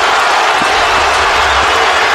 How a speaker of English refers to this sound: The crowd on its feet here at the Air Canada Center.